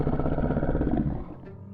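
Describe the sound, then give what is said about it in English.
A deep, rumbling animal growl in a foggy forest holds steady for about a second, then trails off and fades out. No voices are heard. “You start to hear growling.”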